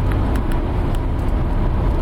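Steady low rumble of a car driving back from IKEA, heard from inside the cabin, with constant road noise and engine drone filling the background and faint ticking clicks above it.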